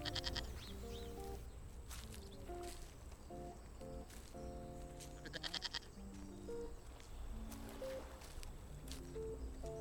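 A herd of goats shelters from the sun under rocks beside a path. Many goats bleat in overlapping, wavering cries, forming a busy chorus over a steady outdoor rumble with occasional sharp rustling bursts.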